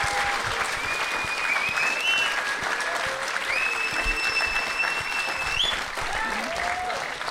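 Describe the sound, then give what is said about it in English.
Sustained applause from a live show audience in Ireland, a dense, steady wash of clapping lasting several seconds with a few faint whistles rising above it. “Give yourselves another round of applause.”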